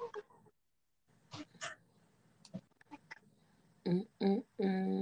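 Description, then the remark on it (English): A cat lets out three loud meows in quick succession near the end, after a stretch of quiet shuffling and scraping handling noises. “My child came to get his cat.”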